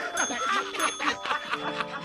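Bright bells ring continuously in overlapping, shimmering tones, steady throughout, with some busy chattering or giggle-like sounds mixed in underneath.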